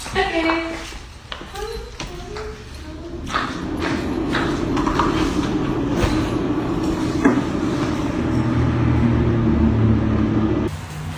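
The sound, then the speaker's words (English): A hooded hair dryer, with a person sitting under it, blows with a steady, loud whooshing drone and low motor hum, kicking in after a few seconds of muffled voices and cutting off abruptly near the end. “Sit you under the dryer.”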